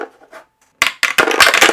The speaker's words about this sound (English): Let's roll dice for the last time in this episode. Okay.